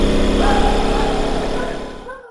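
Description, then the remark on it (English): A Ford Bronco engine roars loudly with a deep, rumbling, buzzy tone that holds fairly steady, then cuts off abruptly after about two seconds. “This is the Ford Bronco. Yeah, well, listen to this demon.”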